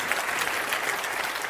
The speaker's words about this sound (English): Can you clap your hands if you know what I'm talking about? Isn't that true?